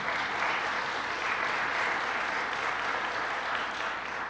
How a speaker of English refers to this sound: Were y'all not just blown away by the music we had today? Give everyone a round of applause. Come on.